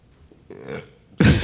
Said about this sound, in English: Sorry. Always burp on mic. Sorry.